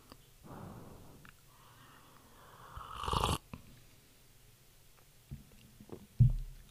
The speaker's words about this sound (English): Take a sip of my tea here.